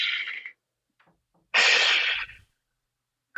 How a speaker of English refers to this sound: People don't realize how important breathe, not just the normal everyday breathing that we do, but a conscious taking of the deep breath. Even just hearing you do that, I instantly take a giant breath.